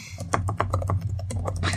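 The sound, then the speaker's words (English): Rapid, uneven keystrokes clatter on a computer keyboard in quick bursts as someone furiously types a review, over a steady low background hum. “If you can hear typing, that's Elliot furiously typing a review.”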